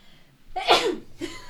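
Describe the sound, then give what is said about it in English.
A single sharp sneeze bursts out loudly, followed by a brief breathy exhale and sniff, with no talking. “I had to get through that sentence and I was holding it in.”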